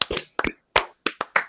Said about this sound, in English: That's the show, everybody. Let's clap it out.